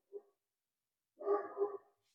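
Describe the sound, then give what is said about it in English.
A dog barks persistently: one short yap, a pause, then a longer, harsher burst of two rough barks run together, fairly loud against an otherwise quiet background. “My dog is just not giving up.”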